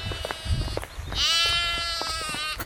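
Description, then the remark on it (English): A lamb lets out a long, wavering bleat, rich in harmonics, after some scattered knocks and rustling outdoors; no one speaks. “The one that's bleating looked like it's got six legs.”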